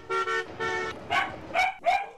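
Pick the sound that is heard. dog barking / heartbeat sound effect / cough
dog barking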